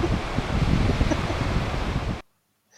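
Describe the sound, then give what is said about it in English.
A squeaky sand sound effect: a dense, gritty rubbing and crunching texture that holds steady and loud for about two seconds, then cuts off abruptly. No voices. “Can we stop playing squeaky sand?”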